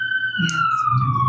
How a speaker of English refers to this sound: It's okay. Siren. Just a siren.